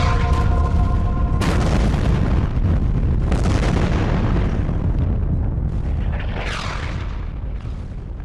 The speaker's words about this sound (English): The ground beneath me convulsed, continually shook and trembled as cannon upon cannon upon cannon blazed.